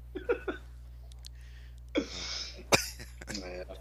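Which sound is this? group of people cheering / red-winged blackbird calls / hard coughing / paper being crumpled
hard coughing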